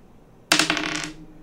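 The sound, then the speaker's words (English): A ten-sided die clatters across a tabletop in a quick burst of bright, rattling taps that tumble and fade within about half a second, with no voices. “Don't let me down, D10.”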